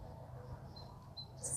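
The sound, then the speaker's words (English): A few faint, thin, high-pitched bird chirps, brief and spaced apart, over a low steady background rumble; a slightly brighter chirp comes at the end. “Okay, birdie, sing your song. Chirp, chirp, chirp all day long.”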